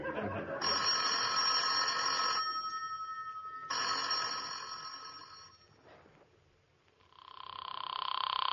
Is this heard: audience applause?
no